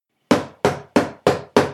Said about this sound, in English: Oh, well, wait a minute. It sounds like somebody's at the door.